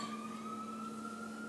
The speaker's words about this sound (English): Sirens. Right. I don't know if y'all can hear that. I live in the hood now.